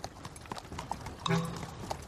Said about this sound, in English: My, that's a scary pumpkin, said a scarecrow riding a horse-drawn cart. Well, it wasn't a real scarecrow. It was Farmer McCall, dressed up as one.